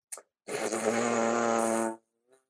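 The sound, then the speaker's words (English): A short click, then a steady, low-pitched lip buzz held for about a second and a half, loud, raspy and rich in overtones, ending abruptly with a faint trailing sound. “I can't buzz that high.”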